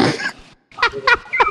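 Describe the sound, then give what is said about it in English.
A pig grunts while drinking: a wet, noisy slurp at the start, then a brief pause and three short grunts in a quick, uneven rhythm. “You invite a pig, you get the mess.”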